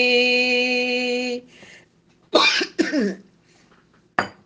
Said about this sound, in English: Excuse that cough.